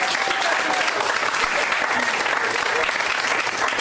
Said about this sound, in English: Thank you. A round of applause.